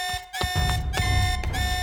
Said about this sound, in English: My eyes shot open as the alert blared through the station. I jumped out of bed heading for level 1 and squinting at the lights as they flashed. The system had been on the fritz for the past couple of days, and this was probably another false alarm.